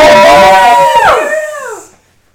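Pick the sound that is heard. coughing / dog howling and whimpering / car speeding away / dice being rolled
dog howling and whimpering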